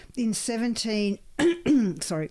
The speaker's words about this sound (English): I'll clear your throat for that one.